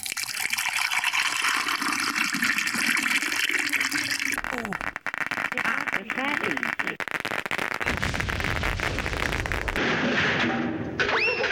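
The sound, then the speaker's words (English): Hot water pours steadily into a soup cup holding soup powder and croutons, a continuous gushing and splashing that shifts in tone as it fills, with faint bubbling and popping crackles from the croutons toward the end. “The powder in the bottom, the croutons are in there, everything's in there. Yes, dear, that's right. And then the water.”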